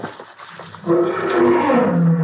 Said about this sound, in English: What was that? Big cat out there somewhere. Good, good. Maybe we'll get a crack at him tomorrow.